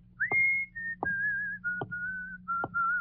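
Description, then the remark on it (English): A person whistles a simple tune alone while walking down a street, the pure tone gliding between a few sustained notes with short breaks, moderately loud over a low steady hum. “I whistled my magic tune.”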